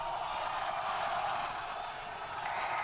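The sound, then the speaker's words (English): A crowd watching a rocket launch claps before lift-off, a dense, steady wash of applause that holds at an even, fairly loud level throughout, with no voices standing out. “Where is this clapping coming from? I think it's mission control.”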